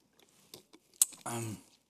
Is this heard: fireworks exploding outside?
no